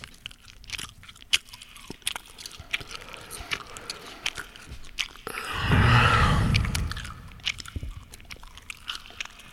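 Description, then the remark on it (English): Close, wet chewing sounds of gum chewed into a microphone for ASMR, with sticky clicks and smacks repeating irregularly, then a louder rustling swell in the middle; no talking. “I'm trying to chew gum for ASMR.”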